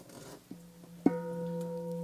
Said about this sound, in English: When we teach meditation to children, it's the first thing we use. We use the bell. We ask the children, we say, listen to the sound of the bell.